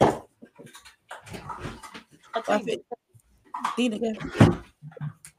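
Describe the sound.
A dog shuffles and whines while being given a treat, amid scattered clunks and rustling, like a cupboard being opened, while muffled voices murmur intermittently.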